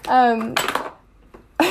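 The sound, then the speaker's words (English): After a short, tonal vocal sound, objects clatter loudly as a cat named Oliver, trying to climb out an open window, knocks them down. A brief lull and a faint tap follow, then another clattering crash begins at the end. “he's knocking stuff down.”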